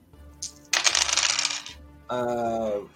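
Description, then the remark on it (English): Dice rattle and clatter across a hard table surface for over a second, fairly loud, followed by a short sustained vocal tone. “Dice are cooling down.”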